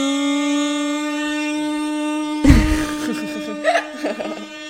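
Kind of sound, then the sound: sound effect, air horn sound effect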